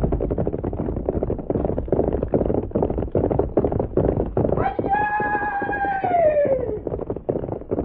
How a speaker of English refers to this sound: That horse.